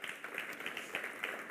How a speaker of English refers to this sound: That's the setup and teardown team that clapped.